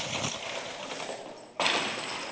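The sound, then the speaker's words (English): Metal chains rattle and clink continuously as a preacher handles another set of chains during a sermon, a busy jangling clatter that briefly quiets before bursting back louder. “Need another set of chains.”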